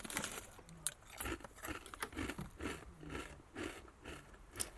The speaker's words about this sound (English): Did anyone else hear me chewing these? Barely. I can hear myself. That helps a lot. That way I know how much noise I'm making.